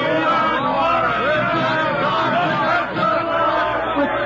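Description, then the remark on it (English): A crowd of 97 people outside on Faculty Row cheers and shouts continuously for a professor, a dense, loud roar of many overlapping voices that holds steady without a break for several seconds. “Well, they seem to be cheering for you, Professor.”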